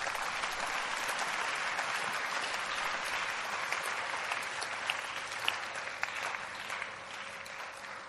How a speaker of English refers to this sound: Clap for Jesus.